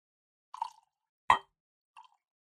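A high-rye whiskey of 64% corn and 12% malted barley is poured into a glass, heard as three brief liquid splashes and plops, the middle one sharpest and loudest, with quiet gaps between and no one talking.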